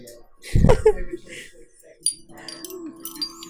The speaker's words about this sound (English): The sound of necklaces. They're all enormous.